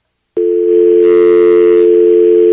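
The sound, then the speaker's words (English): A steady telephone dial tone from a phone device in a studio switches on abruptly and hums continuously and loudly, with a faint rustle of handling noise briefly layered underneath partway through. “Okay, so I have the phone device, and I can take in live calls, which I can here in my studio.”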